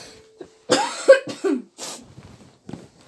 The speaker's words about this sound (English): My throat was dying too. That's it. Let's start again once I've coughed a bit.